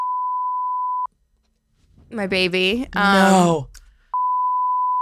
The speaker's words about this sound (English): That was it? Oh, wow. We're definitely going to have to bleep a couple names there, but that's crazy.